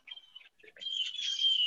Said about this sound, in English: Well, first of all, are those birds in your hat? Are those your birds? Somebody's got birds.